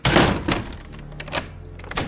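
Scrooge's door thuds shut, followed by a few sharper clunks and clicks as the lock is turned twice to double lock it, with no voices.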